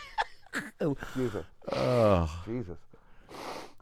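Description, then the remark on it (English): Someone blows their nose in a few forceful, snorting nasal bursts, mixed with short voiced vocal sounds and ending in a loud, breathy hiss of air. “The blowing your nose could be your new take a sip after the punchline.”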